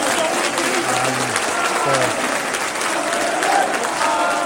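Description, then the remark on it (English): A large stadium crowd applauds steadily as footballer Andy Renard is clapped off, a dense, continuous wash of clapping with a few low voices and calls mixed in, holding at a loud, even level throughout. “Andy Renard is getting clapped off, the only good player today.”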